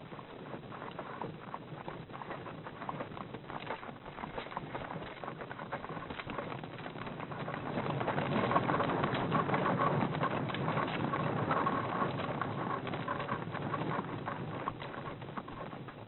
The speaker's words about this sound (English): A horse and a cart.